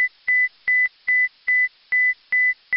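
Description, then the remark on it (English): The emergency alarm on the International Space Station (ISS) beeps repeatedly, signalling an emergency such as fire or loss of pressure: a steady, fast train of about seven loud, high-pitched electronic beeps, each opening with a sharp click, sounding alone with no voices. “That's the emergency alarm on the ISS, and there are caution warning panels that light up to tell you what's wrong.”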